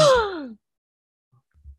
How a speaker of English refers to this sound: Gasp.